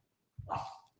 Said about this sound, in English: Odie starts barking at Eclair because he wants to play.